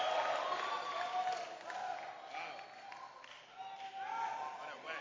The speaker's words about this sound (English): Clap your hands for the Lord. And give the Lord a shout. The Lord a shout.